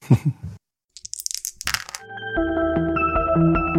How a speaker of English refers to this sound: Roll some dice.